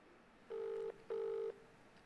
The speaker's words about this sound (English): let me just see if I can get hold of him now. Let's see if this rings out.